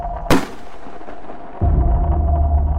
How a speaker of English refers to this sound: Everyone hears this gunshot ring out, and then the wind begins to howl again